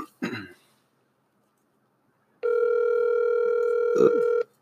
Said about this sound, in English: So, yes, sir. Let's see if she pick up the phone first of all. Let's see if she love me.